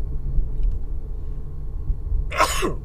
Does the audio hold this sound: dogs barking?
no